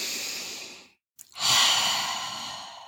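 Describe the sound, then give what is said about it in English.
A long, deep inhale followed by a brief pause and then a full, airy exhale, fairly loud, with no talking. “Now, if you're like, I can't be bothered with all that counting, then just 3 good deep breaths can get you there.”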